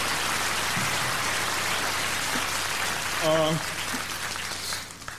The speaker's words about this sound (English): And I'd like a hand of applause for all of the other nominees, please.